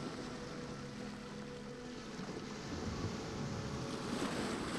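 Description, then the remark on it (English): A steady, broad wash of surf noise as warm waves flow over the sand, with a low rumble, swelling slightly louder toward the end as the waves roll in; no voices, just the continuous hiss of water on the shore. “Listen to the rhythm waves flow over the sand.”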